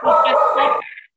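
A female dog gives a loud bark that stretches into a short, strained vocal burst lasting about a second, with no talking over it.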